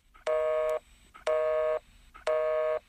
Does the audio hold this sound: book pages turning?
no